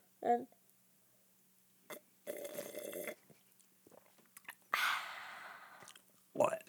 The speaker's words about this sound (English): Let's just have a sip of water.